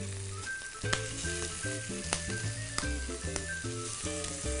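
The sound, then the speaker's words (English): Chicken livers are dropped into a hot pan of shimmering extra virgin olive oil and sear over high heat with a steady, hissing sizzle and occasional sharp crackling pops, while a soft melodic tune plays underneath. “So now that we have a nice hot pan, nice shimmering olive oil, I'm just gonna drop these chicken livers right in.”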